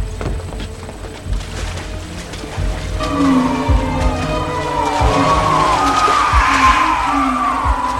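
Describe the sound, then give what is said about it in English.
Eerie, wavering shrieks of shrieking eels, a film sound effect, rise and fall over a low rumble of water and ambience, growing steadily louder as several high, warbling cries overlap in a creature-like chorus. “Do you know what that sound is, Highness? Those are the shrieking eels.”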